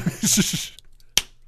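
One crisp, sharp hand slap of a man high-fiving himself rings out alone, following a brief moment of voices and a short pause.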